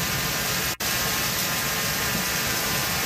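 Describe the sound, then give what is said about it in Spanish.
A heavy downpour in the Melbourne area, during a storm that also brought hail, roars as a dense, steady hiss that fills the whole clip, broken once by a split-second dropout. No voices are heard, and no thunder stands out. “¡Qué aguacero! Mira los truenos. Mira cómo se oye eso.”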